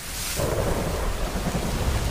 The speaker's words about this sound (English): The storm will pass